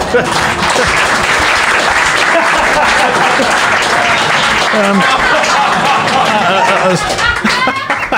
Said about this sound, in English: So we have a prize, of course. We do have it. So a round of applause.